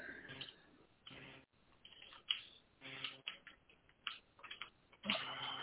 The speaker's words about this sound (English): I think somebody is on a keyboard or something. They tearing that thing up.